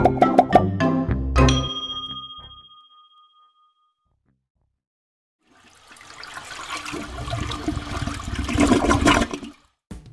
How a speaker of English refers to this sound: Now we're at the part of the show where we try to find out how many flushes it takes to get rid of these meadow muffins.